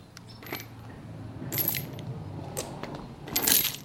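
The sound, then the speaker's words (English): Metal shell casings clink and skitter underfoot on the ground of an abandoned, trashed house with bullet holes and broken window glass in a town in Mexico, in several bright, ringing bursts, the loudest near the end, over a low rumble of background noise with no one speaking. “And everywhere on the ground are shell casings.”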